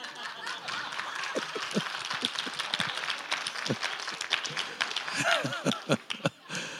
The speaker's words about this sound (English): Y'all people don't know how to give applause.